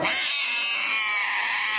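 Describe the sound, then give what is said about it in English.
A kitten cries in one long, continuous high-pitched wail, loud, holding steady for nearly two seconds with no voices around it. “And the little kitten's just crying and mewling.”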